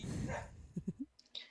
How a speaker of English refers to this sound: Ah, puppy dog.